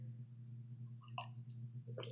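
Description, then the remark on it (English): A quiet sip of tea: a short slurping burst midway, then a second brief slurp at the end, all over a steady low electrical hum with no talking. “excuse me, I'm just going to take a little sip of tea here.”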